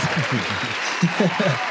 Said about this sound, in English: Do we have claps? Yeah, I do. I have applause. Yeah. Give it a second. It'll come.